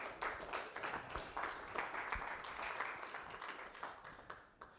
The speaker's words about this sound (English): If this has blessed you tonight, give God a hand clap of praise.